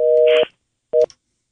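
A telephone busy signal as a caller's line drops during a radio call-in: a loud, steady two-tone beep lasting under half a second, a pause, then a shorter second beep, with faint line noise around it and no voices.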